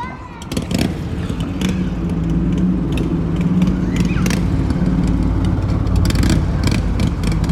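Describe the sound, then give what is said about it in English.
Steady street traffic with cars rumbling and passing, a continuous low engine drone and occasional louder vehicles, with faint voices mixed into the background, heard through open kitchen windows above a street in Malmö, Sweden. “And you have to have the windows open because it's like too hot in the kitchen, and you just want to shut up all the cars.”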